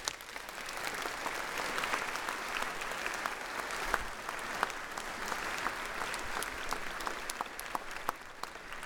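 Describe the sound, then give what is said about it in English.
A church audience claps steadily for several seconds during a service, a dense, sustained applause filling the room at moderate volume, with scattered sharper claps standing out and no talking. “You may stand, receive the greeting of your family and mentors, and also the applause of our congregation.”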